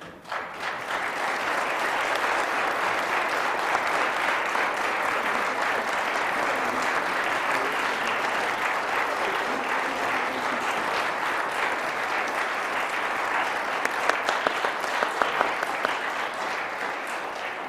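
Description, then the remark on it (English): Sustained audience applause at Nazarene Bible College, Colorado Springs, for people being handed signed college certificates: a dense steady wash of many hands clapping at even loudness for the whole stretch, with a few sharper individual claps poking out near the end. “So as I hand these to them, perhaps you would like to express your appreciation to them by applauding?”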